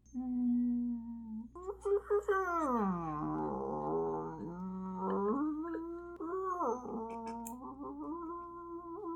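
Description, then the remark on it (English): Long, wavering moans and rising-and-falling tonal glides, like whale song, seemingly imitated by a human voice. The calls slide up and down in pitch over several seconds, steady. “As they leave, Ruiri hears the sound of whales in the distance.”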